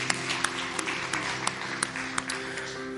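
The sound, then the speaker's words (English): An audience breaks into steady applause for those who prayed the prayer to receive the Lord for the first time, a dense wash of many hands clapping with a few sharper individual claps standing out at regular intervals, over a low background hum. “Look, if you pray that prayer for the first time receiving Lord, we want to give you a hand clap.”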